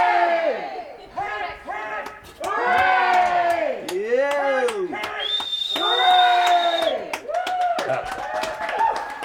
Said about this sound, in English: She's out the front clapping, is she? Oh, there you go. Oh, that's great. You can hear it. Yeah, you can hear it. People are loving it.